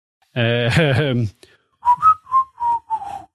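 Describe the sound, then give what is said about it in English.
A voice imitates a police whistle, as blown at Nutbush Police Station: first a loud buzzing warble, then four or five short whistled blasts in quick succession, each bending slightly in pitch. “as you blast out like several like warbles on the whistle, which go out into the ether, and you're like, well, that'll have to do.”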